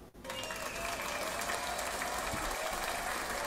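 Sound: round of applause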